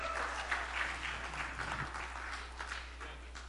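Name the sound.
audience hand clapping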